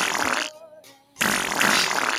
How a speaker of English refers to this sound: See, I can even play the bugle over the music and talk, and I could fart over it. Like, if I didn't like the song, I can just go.